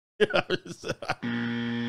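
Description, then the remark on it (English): A voice makes a few quick, choppy vocal sounds, then a loud, steady car-horn-like blare holds without a break to the end, unwavering. “Beep, beep. Oh, there's my husband.”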